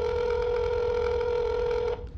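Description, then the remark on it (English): A phone line ringing on an outgoing call made at almost 5 a.m.: one steady, buzzy ring tone holding for about two seconds before cutting off, thin as if heard through a handset, with no voices. “Damn it, can't you answer the phone just once?”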